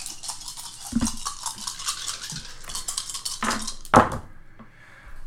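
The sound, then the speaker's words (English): A big handful of dice clatters and rattles in a dense, bright burst of clicks, with a couple of sharper knocks near the end before the noise abruptly dies away. No one speaks. “Make that roll.”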